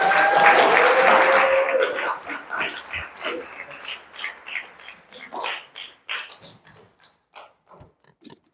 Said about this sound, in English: Can you guys give these guys a round of applause?